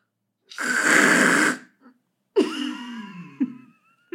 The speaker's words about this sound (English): Are you okay? Okay. Here, have a tissue. Blow your nose.